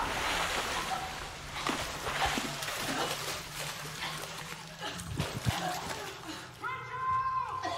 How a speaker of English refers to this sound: Oh, it's water, obviously.